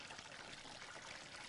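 Water pours steadily into a container, a continuous splashing rush with a bright, hissy texture, with no voices over it.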